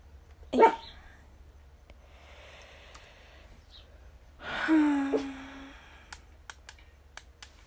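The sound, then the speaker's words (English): A puppy gives a single sharp bark, then after a pause lets out a longer, drawn-out yelping bark that trails into a whine, followed by a few faint clicks. Nobody speaks. “I've got a barky puppy.”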